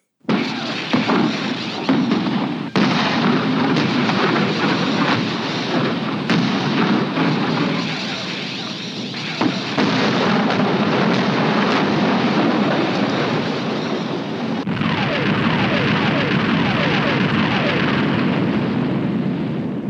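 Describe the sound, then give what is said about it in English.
A loud Death Star superlaser cannon blast, a dense roaring barrage of booming energy that rumbles continuously for the whole stretch, with a few abrupt shifts in texture and no voices. “Death Star cannon.”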